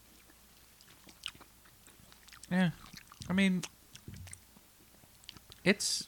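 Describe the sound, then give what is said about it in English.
Crunching as a big, crisp, spiced chip is bitten and chewed, with scattered sharp cracks and clicks, while people murmur and talk briefly over the chewing. “I thought it was going to have more of a snap.”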